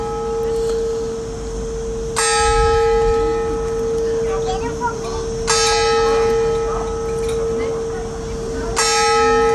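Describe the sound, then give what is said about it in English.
A church bell in Alicante, Spain tolls slowly in the morning, three evenly spaced strikes about three seconds apart, each ringing out and lingering over a steady low background murmur. “Some lovely church bells there, Daniel, in Alicante, I believe, this morning where you started.”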